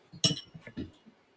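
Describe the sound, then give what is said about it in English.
Shot glasses clink together once in a toast, a bright, ringing tap that fades quickly, with faint low voices murmuring around it. “Is this one shot? Yeah. Yeah. That's good enough. Cheers, man. Hey, cheers, fella.”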